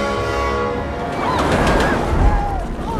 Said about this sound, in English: And why are we chasing a runaway train?